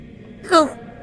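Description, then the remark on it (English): A single short, sharp sneeze bursts out, a quick breathy explosion with a voiced edge that fades within a fraction of a second against a quiet background. “Oh. Are you okay? Bless you?”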